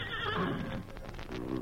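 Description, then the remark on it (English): The Lone Ranger's horse Silver lets out one loud whinny of warning near dawn, a shrill quavering neigh that drops into a lower, rougher rumble over about a second and a half, with no voices present. “The Lone Ranger and Tonto were sleeping peacefully when the great horse Silver aroused them with a whinny of warning.”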